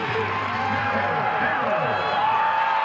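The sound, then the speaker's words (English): A large college football stadium crowd in Columbia, Missouri roars and cheers as Sarah Fuller kicks, a steady, dense wash of voices, loud and unbroken throughout, with scattered shouts rising above the din. “You can hear the crowd.”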